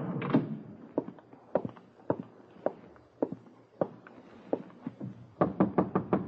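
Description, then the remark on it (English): Dull, evenly paced thuds lead into a quick flurry of knocks on a 9th-floor suite door at the Heath Hotel on Madison in New York, clear, with no voices over them. “Door's open, boy. Come on in.”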